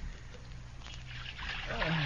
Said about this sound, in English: Yes. Pour some hot water in this basin so I can soak my feet.